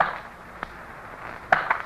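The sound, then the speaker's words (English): A woman drops two small coins, the smallest there are, into a box: a faint tick, then a pair of bright, ringing metallic clinks in quick succession over a quiet hiss. “And she is dropping it into the box.”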